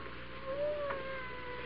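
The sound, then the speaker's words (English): A single drawn-out cat meow, rising then sliding down in pitch, fairly faint and slightly muffled, from an unseen cat behind a wall in the room, over a quiet room hum with no talking. “I hear a cat. He must be right in this room, but I don't see him.”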